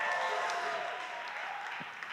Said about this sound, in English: Last week, we started off our Chi Alpha small groups, and I heard that they were absolutely incredible. I'm going to get you to yell one more time for our small groups.